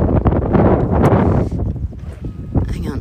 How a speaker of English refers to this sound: in the car because it's getting super windy.